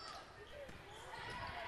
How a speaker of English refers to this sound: Slaps the volleyball and serves.